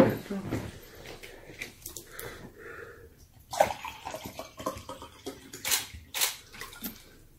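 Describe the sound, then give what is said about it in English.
Water is poured out for people to drink, pouring and splashing in uneven bursts, with a few light clinks like glassware and faint background murmuring. “I give us water.”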